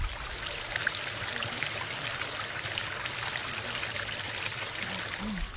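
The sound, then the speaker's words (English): A gentle stream trickles and babbles steadily, a continuous soft wash of flowing water with small bright splashes, even in level, with no voices. “The little water flowing, that peaceful, serene flow of the water.”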